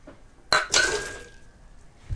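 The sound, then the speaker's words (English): A beer glass clinks twice in quick succession as it is being rinsed, bright, with a thin ringing tone that lingers and fades before a soft low thump at the end. “Yep, gotta rinse all the leasing off the glass.”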